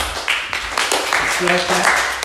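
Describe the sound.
A group claps together in a dense, steady patter of overlapping hand claps lasting a couple of seconds, with a brief voice sounding partway through.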